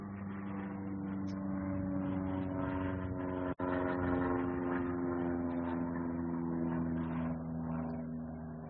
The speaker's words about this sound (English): I'll wait for the plane to pass again.